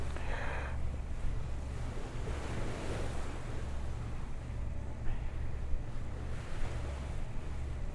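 Steady wind and sea noise on a boat heading toward Deception Island, with a deep low rumble underneath and waves surging and washing past in soft swells; no voices.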